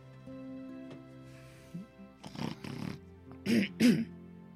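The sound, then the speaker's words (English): A voice imitates someone snoring in a tent at a camp, with several rough, snorting bursts, a pair in the middle and two louder ones near the end, fairly loud against a quiet background. “And you just hear someone snoring in the tent.”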